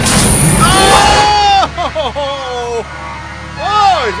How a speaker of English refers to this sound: Glove compartment's a little too loud this week, too. I gotta turn it down next week.